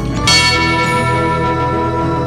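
A single loud tubular bell strike rings out and sustains over a dense, droning bed of music with slightly distorted electric guitars, its metallic tone lingering as the instruments continue.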